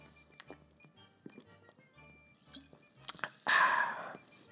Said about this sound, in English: hold on, I'm going to take another sip of my beverage.